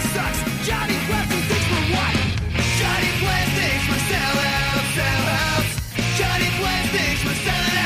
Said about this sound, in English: Now, this is just like pop punk, right?